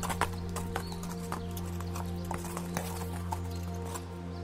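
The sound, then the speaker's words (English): Hooves of a horse being ridden back to the stables clip-clop at a steady walking pace, sharp knocks repeating every half second or so over a constant low mechanical hum, clear throughout. “This is someone riding a horse back to the stables.”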